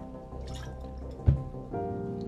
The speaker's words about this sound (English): So just give me a second. I'm gonna take a sip of water, and then I'm gonna start the trailer, and I'll let you guys know what's going on.